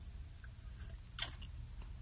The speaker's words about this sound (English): That was a little sip.